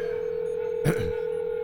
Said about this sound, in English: Dialing the Deus Ex Machina. Dialing complete.